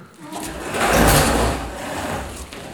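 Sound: bus engine idling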